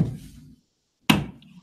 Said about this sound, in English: My bad, I was over there beating up the mosquito.